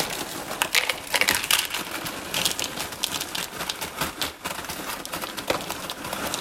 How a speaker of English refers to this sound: hold on, I'm pouring cereal, pause.